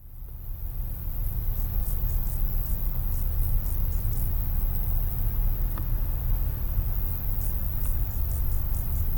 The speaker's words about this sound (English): There were what I took to be grasshoppers making themselves heard in the heat of solar noon in the cemetery.